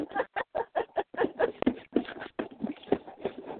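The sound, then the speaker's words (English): A male pet bird scrabbles and flutters around its cage, nearly falling off it, making a quick run of scratchy, rhythmic shuffling bursts with a few short squawky calls mixed in. “In that case, he's my bird.”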